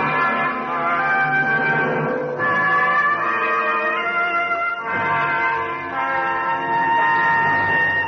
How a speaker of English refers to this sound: Bells ring out on Broadway, and the horns blow, and there's laughter.